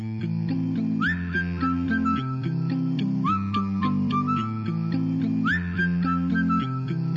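A cappella group sings steady chords with crisp rhythmic vocal percussion while a bright whistle swoops upward in short repeated phrases above the voices, loud throughout.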